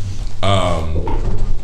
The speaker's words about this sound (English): Excuse me. Sexy. ASMR burps, y'all.